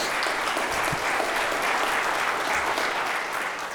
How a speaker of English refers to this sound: Yeah, I'd clap for that too.